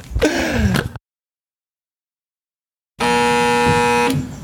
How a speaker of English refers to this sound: Ooh, old school doorbell. That is creepy.